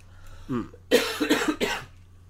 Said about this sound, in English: Oh, excuse me. We're both a little under the weather right now, in case anyone's wondering. We're recording separately. Yeah. We're both... So if we cough a little, we apologize, but we're way over here.